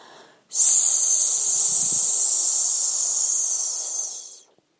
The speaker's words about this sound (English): So, to do the snake breathing, have the children sit up tall, take a deep breath in, filling up their whole body. Get them to pause and breathe out slowly and smoothly, making a hissing sound as loud as they can, like this.